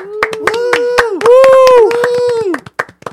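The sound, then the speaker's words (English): A short burst of crowd cheering played as a sound effect, with several voices whooping and hollering over scattered hand claps, loud, lasting about three seconds before cutting off. “Can we do the cheer sound effect, please?”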